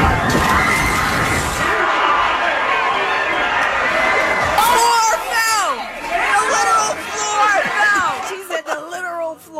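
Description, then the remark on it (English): A loud, dense crowd celebrates a school's game win in an apartment clubhouse, with overlapping cheers, shouts and excited chatter in a steady roar. Toward the end, individual high-pitched yells stand out as the din thins slightly. The clubhouse floor fell through, injuring 30 people. “But here's the audio of the folks, because 30 people got injured. The entire floor fell through the bottom.”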